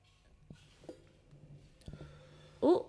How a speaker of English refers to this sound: I got a cough. It's okay. And I'm hot now because I did a cough.